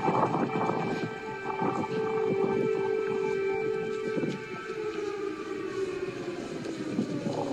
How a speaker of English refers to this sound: There's air raid sirens playing. Oh, yeah, I heard that they played the air raid sirens just for dramatic effect.